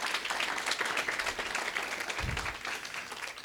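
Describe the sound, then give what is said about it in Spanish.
An audience breaks into steady applause for the actors, a dense wash of many hands clapping at an even loudness throughout, with a brief low thump partway through. “¿Les pueden dar un aplauso a los actores esta mañana, por favor?”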